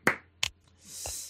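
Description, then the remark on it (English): One person clapping, just a few sharp claps spaced slowly and unevenly, with a soft hiss near the end. No one speaks. “I'm going to applaud, and I don't even know why.”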